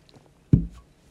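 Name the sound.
drinking water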